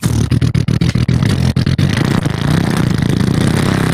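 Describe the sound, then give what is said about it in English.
A loud motorcycle engine sound effect revs in a quick series of choppy bursts, then settles into a steady, full-throttle roar that holds strong to the end. “And then I hit them all that stuff, the motorcycle noises, here, I'll do one.”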